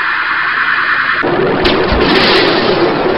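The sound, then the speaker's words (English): A loud rushing hiss swells into a heavy armored vehicle gun blast and explosion in a courtyard, with two deep booming thumps inside a sustained roaring rumble of debris and noise; the blast breaks every window in the building and melts the armored car into slag. “You've broken every window in the building. The armored car melted into slag.”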